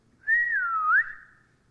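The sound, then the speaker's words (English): A single loud whistle by a father outside calling his child, a sliding two-part call that dips in pitch then swoops back up before trailing off, carried alone with no talking. “And I knew that whistle.”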